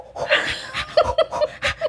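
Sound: imitated heavy breathing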